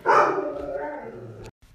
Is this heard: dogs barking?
yes